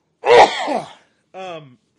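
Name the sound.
sneeze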